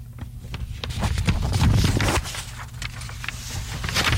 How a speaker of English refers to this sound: What's going on here? Turning of the pages. The crinkling of the paper.